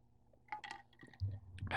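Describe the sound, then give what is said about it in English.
A few soft glassy clinks as glasses are raised in a toast, followed by low gulping and liquid sounds of people sipping from glasses. Short and fairly quiet, with no talking. “I'll drink to that one. Yeah. Cheers.”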